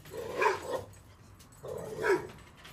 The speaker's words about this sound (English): Just nothing. Nothing happened. It's dogs.